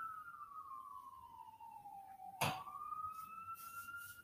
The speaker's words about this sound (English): y'all hear these sirens? This is ghetto. This is ghetto.